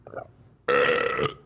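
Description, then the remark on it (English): A loud burp bursts out after a brief faint sound, holding for about half a second with a rough, buzzing tone before cutting off abruptly. “Burping.”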